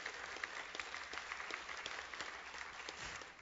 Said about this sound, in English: And come on, amen, you can clap for that.